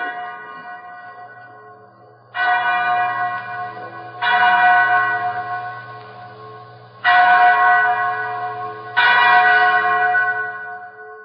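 A chapel bell tolls four times at a slow, uneven pace, each loud, ringing strike hanging and fading into the next, with a low steady hum beneath and no voices.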